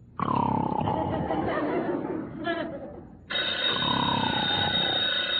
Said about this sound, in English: The telephone. Answer it.